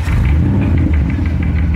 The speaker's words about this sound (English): There he goes, pulling away with a car full of garbage bags. Within those garbage bags is gasoline.